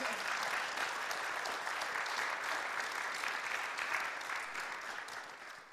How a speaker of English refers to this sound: And we so appreciate you, Connect Group leaders. A round of applause.